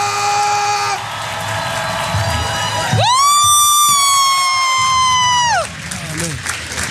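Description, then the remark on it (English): A crowd cheers and claps steadily as DJ Envy and Gia come to the stage, and a loud, sustained high-pitched whoop rises above the noise for a few seconds midway before the applause carries on. “Ladies and gentlemen, coming to the stage, the Casey crew. Give it up for DJ Envy and Gia!”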